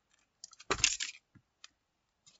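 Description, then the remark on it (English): A piece of paper is torn in half for a lucky draw in a single quick tear lasting about half a second, with small crinkles and rustles of handling before and after. No one speaks. “Tearing it in half.”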